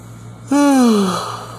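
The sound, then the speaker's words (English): A person yawns once, with a loud voiced exhale whose pitch slides steadily downward before trailing off into breathy air. “I had a long day. I know I'm yawning.”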